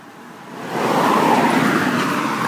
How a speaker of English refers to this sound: Oop, car.